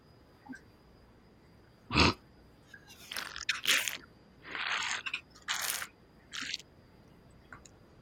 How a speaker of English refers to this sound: I was too busy slurping down this this fucking delicious beverage.